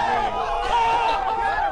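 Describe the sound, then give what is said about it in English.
A live crowd at the Loft, Lucky's in downtown Houston, cheers and yells steadily, many voices blending into a loud, continuous roar with shouted whoops rising above it, holding at full strength throughout. “Can we get the crowd real quick?”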